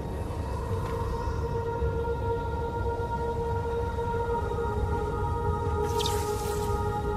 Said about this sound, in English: Water.